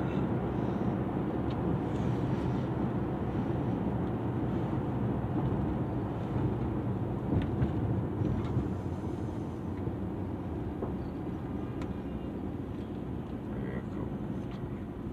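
A passing train fills the scene with a heavy, continuous low rumble and clatter that stays loud and steady from start to finish.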